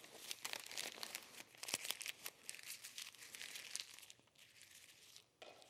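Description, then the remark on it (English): A sheet of paper is crumpled in a right hand, crushed by pressure from the outside, giving a continuous run of sharp crackles and crinkles that ease off near the end, with no one speaking. “See, I just took this powerless little piece of paper and conformed it to the shape of my right hand.”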